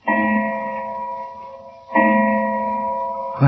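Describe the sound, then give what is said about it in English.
A clock strikes two o'clock, each deep, resonant stroke ringing out with a long, slowly fading hum before the next; a third stroke just begins as the sound cuts off. No voices. “What's that? 2 o'clock, Doctor.”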